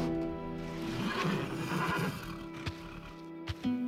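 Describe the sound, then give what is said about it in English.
A horse in a stable whinnies loudly, a shaky, wavering neigh lasting a couple of seconds, followed by a few sharp knocks like hooves shifting on a hard floor. “Tonight, Rosa and I had gone to the stables and walked hand in hand among the finest horses I had ever seen, making plans for our future together.”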